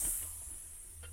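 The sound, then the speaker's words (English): A faint, steady hiss of an open phone line with a low underlying hum, continuous and unbroken, with no voices for about a second, after a phone-in caller has dropped off the line due to a technical fault. “We seem to have lost him there.”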